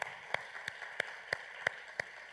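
Faint, steady crackle of audience applause, with a few sharper claps standing out at an even pace of about three per second. No one speaks.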